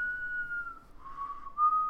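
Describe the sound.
A person whistles a short Western movie theme melody, clear sustained notes gliding slightly in pitch, heard alone with no talking.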